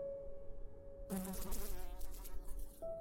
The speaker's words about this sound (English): Her skin was sickly pale, yet mottled with patches of purple, as the excitable buzz of flies and the wriggle of maggots formed amidst the sheets caked with blood, and within the impacted recesses of her very obvious wounds.